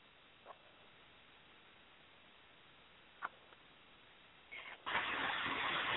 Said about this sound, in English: okay, I hear a lot of static.